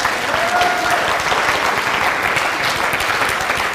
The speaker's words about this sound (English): You can say, give him a bigger round of applause.